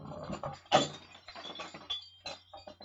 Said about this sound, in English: If I, that's Holly's squeaky toy. That's not Holly doing other things. She likes to sit on it, so just bear with me.